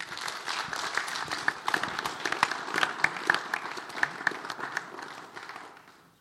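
An audience applauds a guest speaker after his talk, clapping steadily for several seconds: a dense wash of many hands clapping with sharper individual claps popping out, then the applause tapers off toward the end.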